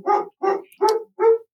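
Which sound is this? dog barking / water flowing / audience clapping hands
dog barking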